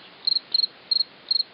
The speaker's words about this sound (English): The chirping sound is actually the male cricket scraping one wing over the other to attract a mate.